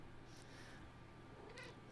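cat meowing

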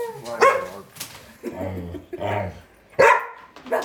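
dog barking

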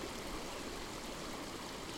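mountain stream water flowing

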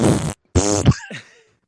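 fart

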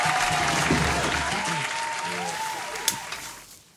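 audience applause

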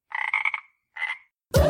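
frog croaking

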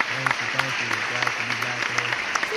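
applause

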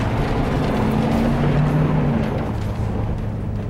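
truck engine driving

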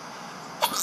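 sneeze

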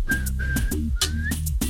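whistle blowing

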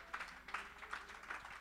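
audience clapping hands

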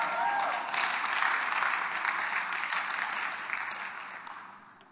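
audience clapping and cheering

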